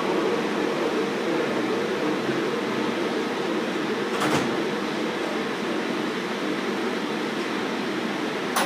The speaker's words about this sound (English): The next stop will be Terminal 4. Please stand clear. The doors are closing. Please hold on.